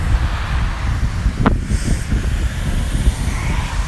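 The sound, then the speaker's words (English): A steady rushing patter of water droplets spilling off small bushes as someone walks past them, fairly loud, with one sharp snap near the middle and no voices. “So it's like a whole bunch of water falling off these little bushes I'm walking past.”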